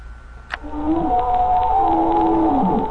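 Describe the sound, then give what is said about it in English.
Whale song plays over a phone line as an answering machine greeting before the message: long, sliding tonal moans that rise and fall, overlapping one another with a faint hiss beneath, sounding somewhat compressed. “Please leave a message after the pretentious whale song.”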